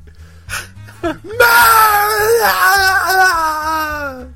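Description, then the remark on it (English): A loud, drawn-out human scream for a movie take, screamed at the top of the lungs to be unrecognizable, with a wavering, wailing pitch, lasting a few seconds and preceded by a couple of short, sharp vocal gasps. “No, I want you to scream it at the top of your lungs and make it unrecognizable.”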